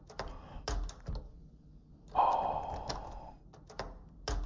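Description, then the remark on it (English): A door being unlocked: scattered sharp metallic clicks and clacks, with a short grinding, squealing scrape in the middle as the lock turns, then more clicks. “Unlocking a door!”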